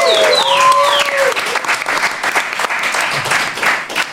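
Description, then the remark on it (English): An audience applauds the show's musician steadily and fairly loudly for several seconds, with a few whoops and whistles rising over the clapping at the start before it continues as dense, even applause. “Onto a round of applause”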